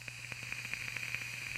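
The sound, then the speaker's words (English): A Vupu TPPX coil head in a vape mod with auto switch crackling and sizzling: a steady hiss with rapid, irregular pops and snaps scattered throughout, fairly quiet and with no talking. “Holy crap, I love the crackles.”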